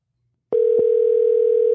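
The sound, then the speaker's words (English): After a moment of silence, a click and then a steady, fairly loud electronic telephone ringing tone of an outgoing call sounds continuously until the end, with no voices. “but let's get Doug on the phone.”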